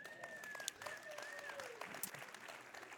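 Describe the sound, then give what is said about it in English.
An audience claps steadily for about three seconds, a dense, soft wash of overlapping hand claps with a few sharper claps standing out and a thin high tone gliding faintly underneath. “Okay, we should be clapping for this one.”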